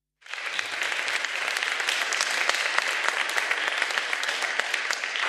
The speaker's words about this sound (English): Please give everyone a round of applause.